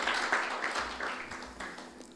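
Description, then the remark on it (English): A crowd at a church service claps steadily for the Lord and the worship team, a dense patter of many hands blending into a continuous wash of applause with no voices over it. “Let's just give the Lord a clap, guys. Thank you, Father. Keep clapping.”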